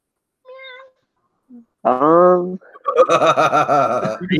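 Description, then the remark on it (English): A person imitates a cat, starting with a faint short call, then a loud, drawn-out meow, followed by a longer wavering, warbly meowing sound. “What is that meow?”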